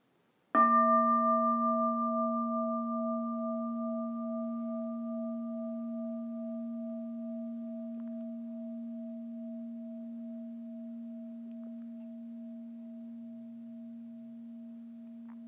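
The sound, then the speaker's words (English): A single meditation bell is struck once, then rings with a steady, low, pure hum and a few higher overtones, fading very slowly over about fifteen seconds with no voices. “Do we have a bell?”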